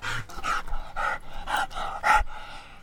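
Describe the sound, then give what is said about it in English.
A light brown pit bull terrier mix dog with four white legs and a square head pants steadily, quick breathy huffs repeating about twice a second with no talking over them. “brings out one more dog. He's a light brown pit bull terrier mix”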